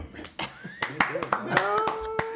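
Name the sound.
group clapping hands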